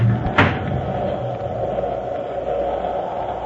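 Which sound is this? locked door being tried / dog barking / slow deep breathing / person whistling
locked door being tried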